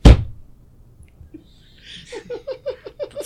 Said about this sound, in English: The slap was so aggressive.